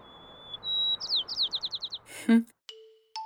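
A bird sings a clear whistled note, then a rapid series of sweeping trilled notes spanning a wide frequency bandwidth, fairly loud, followed by a brief thump and a few thin tones.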